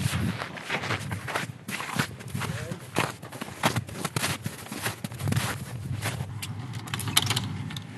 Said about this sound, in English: Today is actually the first day that we're cooking, so you're hearing the evaporator boiling away sap behind me. And so it's boiling sap to make maple syrup? That is correct.